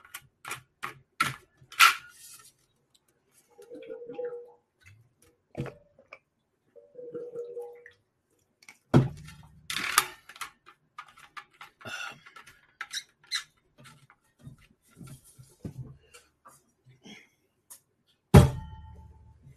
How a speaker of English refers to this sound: I need to take a big drink of water before.